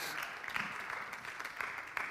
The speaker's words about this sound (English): So so they're coming. Yeah, keep clapping because they still got a little ways to walk.